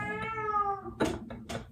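A cat carrying a toy in her mouth lets out a long, wavering meow, followed by a couple of shorter, muffled, breathy calls. The sounds are fairly loud, with no talking.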